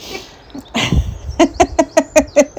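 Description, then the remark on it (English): A crow calls in a quick, evenly spaced burst of about seven short, harsh notes, clear, following a brief rustle of background noise. No one speaks. “Right, it is a crow, can confirm.”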